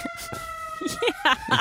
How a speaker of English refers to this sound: Hold on. Let's wait for this ambulance to go by.